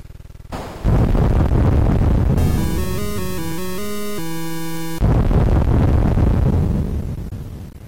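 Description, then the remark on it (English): Loud rumbling cannon-like blasts roar for a couple of seconds, give way to a bright, stepping electronic arcade tune, then the booming blasts return and slowly fade out; the music plays on an arcade game's high score screen right before the initials prompt. “Speaking of high score screens, the music that you hear right before the initial prompt, this piece of music.”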